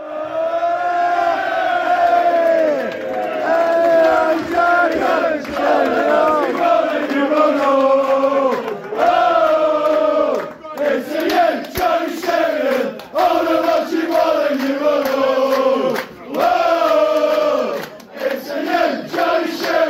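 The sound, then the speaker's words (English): A football crowd at Boundary Park chants loudly and continuously, giving Shez a hero's welcome, many voices singing a rising and falling tune together with rhythmic swells and brief dips, like a terrace song carried by the whole stand. “Boundary Park was bouncing again, and Shez got the hero's welcome that he deserved at Hayside Cricket Club.”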